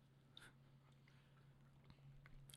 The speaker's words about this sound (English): Sorry, I just had to take a little sip.